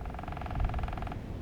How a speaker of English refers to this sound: Oh, must be a woodpecker. Acorn woodpecker in this area. Don't see it, though.